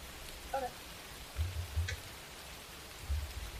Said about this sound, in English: It's raining.